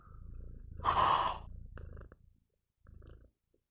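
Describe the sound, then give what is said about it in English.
A cat named Artemy purrs with a steady low rumble, briefly broken by a louder, brighter burst near the start. The purr fades out, then returns for a short stretch. No one speaks. “And he's also purring.”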